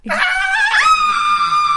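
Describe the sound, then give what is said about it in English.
A single loud, high-pitched scream from a person imitating comedian Chris Tucker, rising sharply and then holding a shrill, steady note for nearly two seconds, alone with no talking. “can you scream? I don't know if I can go that high.”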